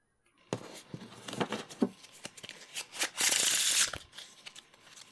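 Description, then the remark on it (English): Crisp card shuffling: a series of sharp flicks and taps, then a dense, hissing riffle of playing cards lasting about a second, followed by a few softer settling sounds. “Shuffling cards. That is shuffling cards.”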